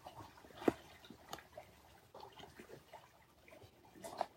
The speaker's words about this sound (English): It's a soft rainy day. Taking in the moisture, the sounds, the tranquility.